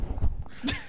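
A quick, muffled impact: a wad of cash punched against a thigh, heard as a few dull low thumps followed by a brief papery slap, all fairly quiet with no talking.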